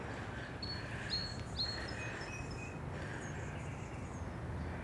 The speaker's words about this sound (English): And I can hear some more hummingbirds.